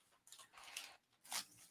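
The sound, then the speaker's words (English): Soft rustling and crinkling of a piece of paper being fetched to write notes on, in a few short quiet bursts, with no voices over it. “Let me get a piece of paper real quick just so I can mark down all my timestamps.”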